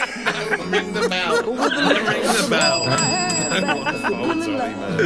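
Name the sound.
bell ringing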